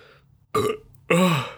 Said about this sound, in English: Oh, God. Oh, milky burp.